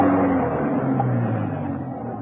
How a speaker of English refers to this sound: A car was coming up the driveway. Had Venus Brown returned?